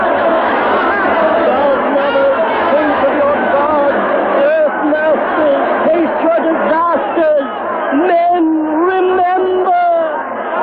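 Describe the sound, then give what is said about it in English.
A dense mob, crazy with terror, murmurs and chatters all at once, a loud, continuous babble of overlapping voices with agitated, rising cries, surrounding the listener, with no single speaker standing out. “They're boiling around us like mullet that smells sharp. We can't move for the mob. They're crazy with terror.”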